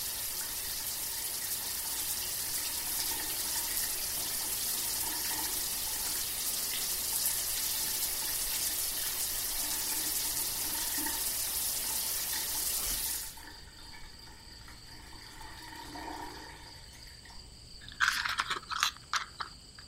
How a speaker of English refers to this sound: Time to have a wild wash under the outdoor forest shower.